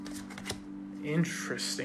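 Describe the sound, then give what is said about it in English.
A deck of cards being shuffled, a quick crisp riffle of papery flutters and snaps, with a brief murmured voice partway through. “That should be a good enough shuffling.”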